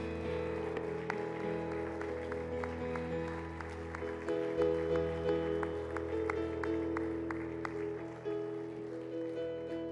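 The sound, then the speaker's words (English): An audience gives a hand clap of praise for two people who stepped up, clapping over steady, sustained music, the sharp claps running through the whole stretch in a loose, fairly regular rhythm at moderate loudness. No one speaks. “Will you give a hand clap of praise for those two that have stepped up today?”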